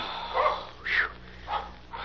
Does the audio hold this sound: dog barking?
yes